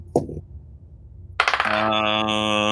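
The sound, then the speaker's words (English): A single faint tap, then dice rolled for a perception check clatter and tumble across a hard surface in quick bounces, landing on 15, before settling into a lingering, bright metallic ring. Fairly loud, with no voices. “That's 15 on the dice, plus 1, 16.”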